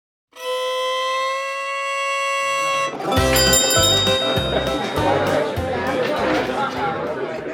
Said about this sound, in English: The jingle of the bell over the door to Vern's was drowned by the flood of voices and the upbeat twang of retro bluegrass music.